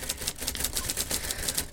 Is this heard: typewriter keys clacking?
yes